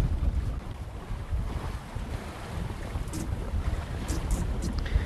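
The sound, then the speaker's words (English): A sailboat moves through open water while its wind vane, named Vanity, is being adjusted for trim; steady wind buffets the microphone with a low rumble while waves wash and splash against the hull, with occasional brief hissy spray near the end. No one speaks. “and we're just adjusting it, trying to figure out the exact trim, and so far so good.”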